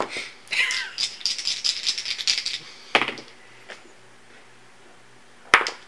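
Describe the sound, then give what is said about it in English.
A male cat hacks and retches to bring up a hairball in a chair, a burst of rapid, rattling coughs and gagging for about two seconds, then a few sharp isolated heaves after a pause. “Yeah, well it's because they get the hairball and then like it has to be up, unfortunately.”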